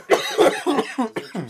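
A person coughs in a rapid fit, about six harsh, raspy bursts in quick succession, loud, with no talking.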